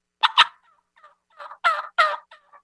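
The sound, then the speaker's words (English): A person imitates a turkey hen's yelp in a lower pitch with the whole jaw moving, a series of raspy yelps, with two sharp opening notes, softer ones trailing off, then two louder, drawn-out yelps. “Go into the lower pitch.”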